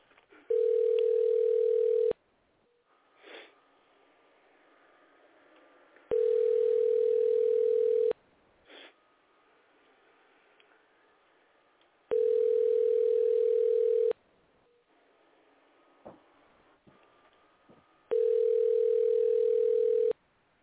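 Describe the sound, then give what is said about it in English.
A telephone line tone sounds as a call is dialed in, in four steady, mid-pitched bursts of about two seconds each, separated by longer pauses filled with faint background noise and no talking. “Let me dial in, punch in.”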